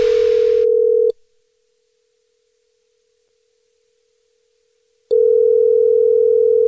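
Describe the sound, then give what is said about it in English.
A telephone ringback tone as someone calls a man: a steady, loud electronic hum cuts off after about a second, then returns after a four-second silence. No one speaks, with a brief hiss of line noise at the start. “No, I'm calling him right now, dude.”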